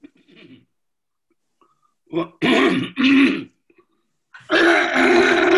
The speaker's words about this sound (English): Well, excuse me. Oh, bless you, bless you.